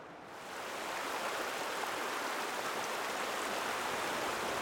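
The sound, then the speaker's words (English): Steady, powerful rush of glacier-fed river water coming down a huge canyon, a dense continuous roar that swells in over the first half second and then holds constant, loud with no voices. “looking at this canyon and how huge it is and the amount of water coming down this”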